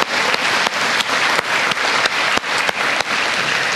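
A church audience applauds its youth for leading worship at a service, a steady, dense wash of many hands clapping at an even loudness for several seconds, with a few sharper individual claps standing out from the crowd.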